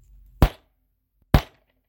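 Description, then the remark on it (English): Two sharp wooden knocks of a gavel, spaced about a second apart, each a loud, crisp bang that dies away quickly, with quiet in between and no talking. “We're going to bang the gavel, and we'll have opening arguments, okay?”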